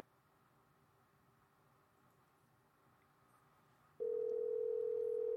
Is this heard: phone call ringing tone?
yes